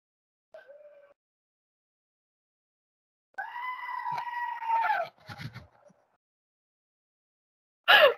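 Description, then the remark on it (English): A goat lets out a short bleat, then a long, loud, strained scream lasting nearly two seconds, followed by ragged rough bursts and a sudden harsh blast at the end. “That, of course, is the original goat screaming.”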